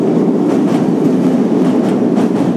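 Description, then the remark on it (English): A train rumbles past on the railway beside a bridge over the River Mite, with a sharp breeze blowing across the bay. There is a loud, steady roar of wheels with a faint rhythmic clatter from the rails running through it, and no voices. “As I cross the River Mite over a bridge beside the railway, and here's a train just going by.”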